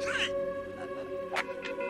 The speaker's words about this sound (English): And she is now gasping on the phone to her mom, and her mom is on the phone, and she's hearing.